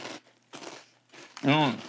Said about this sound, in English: Welcome to YouTube. They can hear us crunch.